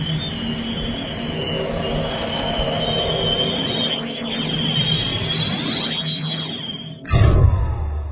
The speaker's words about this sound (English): Look, is that warp engine on? Nope. Now it's on.